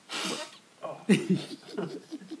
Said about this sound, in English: What? I got a cold. Yo. Bro, you gotta send everybody a warning when you about to blow your nose, bro.